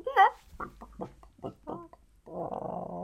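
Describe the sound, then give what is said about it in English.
A chicken clucks: a sharp opening squawk, then a quick run of short, choppy clucks, ending in a longer, raspy drawn-out call. “I love the noise they just constantly make.”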